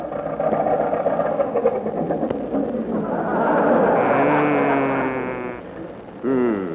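The Wright brothers' early airplane engine sputters and coughs into life, then settles into a loud, steady drone with a rising tone, ending in a brief sharp whine.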